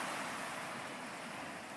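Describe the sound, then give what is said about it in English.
Calm ocean water washes gently against a sandy shore as the sun sets, in a steady, continuous hush with no distinct breaking waves. The sound is soft and even throughout, with no voices. “See the calm water lapping the shore once more.”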